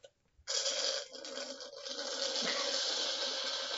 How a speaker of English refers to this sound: Slurps menacingly.